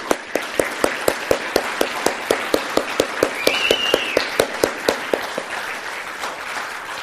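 A roomful of people applauds steadily for standing military veterans and current armed forces members on Memorial Day weekend, with a few sharp, evenly spaced claps standing out, then the clapping thins and fades away.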